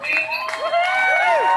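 An audience applauds and cheers together, a steady wash of clapping and voices with a couple of rising-and-falling whoops riding over it for the whole stretch.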